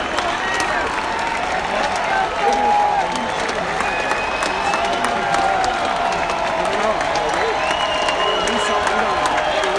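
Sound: baseball stadium crowd cheering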